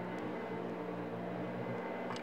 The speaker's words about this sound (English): A vacuum cleaner 3 metres away.